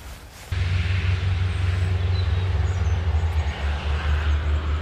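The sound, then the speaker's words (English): A loud, steady rumble of a freight train passing starts abruptly and continues without a break, with a deep droning hum underneath and broad rushing noise above it. No one speaks. “That was a freight train going through, I think.”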